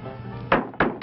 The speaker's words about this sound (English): A tiny door opens.